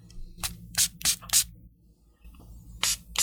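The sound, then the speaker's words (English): A perfume decant atomizer sprays onto a fresh tester strip in short, hissy bursts: four quick pumps in a row, a pause, then one more, over a faint low background hum. “And so we pulled this decant out and we're going to spray it as well.”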